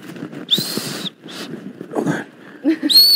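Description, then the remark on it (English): A safety whistle from a backpack's safety kit is blown twice: a shrill, steady high-pitched blast lasting about half a second, then a shorter one at the end, with people talking and moving in between. “So you've got your handy dandy whistle.”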